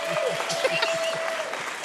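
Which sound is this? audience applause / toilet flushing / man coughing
audience applause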